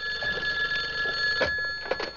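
A telephone rings with a steady, bright electronic tone that holds throughout, loud and close, with a couple of soft knocks or shuffles near the end and no one talking.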